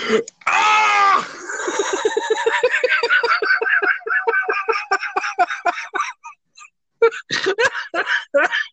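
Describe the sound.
A man's voice imitates Nick Cage screaming while on fire: a loud, strained wail, then a long run of rapid, stuttering shrieks, a short pause, and a few more frantic bursts.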